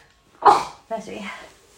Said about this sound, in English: I'm going to sneeze. That's me.